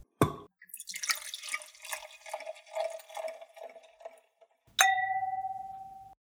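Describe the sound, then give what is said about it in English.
Pinot wine glugs and splashes into a glass for a few seconds as glasses are refilled, bracketed by a sharp tap at the start and a bright, ringing glass clink at the end. No one speaks. “let's just take a break because all of our glasses need refilled”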